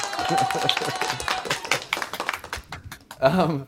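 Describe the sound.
A crowd applauds for hip hop artists on a music show, with dense, irregular clapping that holds steady for a few seconds, then thins before a brief burst of voices rises at the end.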